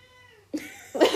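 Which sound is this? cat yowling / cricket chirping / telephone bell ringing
cat yowling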